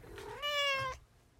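A single drawn-out cat meow, rising in pitch and holding steady before cutting off, clear with no one talking over it.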